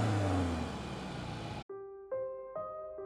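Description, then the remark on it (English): The engine of an abandoned car, started with its keys in the ignition, roars and revs loudly for a second and a half, then cuts off abruptly into a few steady, rising electronic tones. “I peer out to see him opening the abandoned car, making a noise of triumph as he successfully puts the keys into the ignition and revs the engine.”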